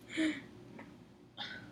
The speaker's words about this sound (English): I just burped again, hopefully.